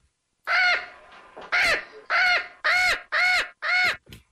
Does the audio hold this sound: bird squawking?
yes